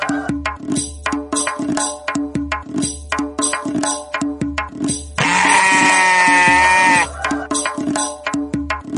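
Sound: sheep bleating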